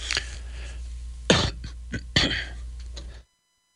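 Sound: coughing and throat clearing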